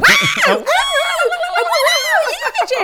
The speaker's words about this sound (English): And that's the best intro to a song I've ever heard. Just a yell. Screeching.